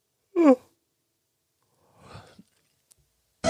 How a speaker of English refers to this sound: Oh, that one. Bruh. Sorry about that. I did a bit of a yawn because I'm really tired.